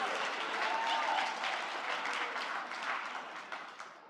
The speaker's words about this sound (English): And I thought, yeah, you can clap for her, yeah.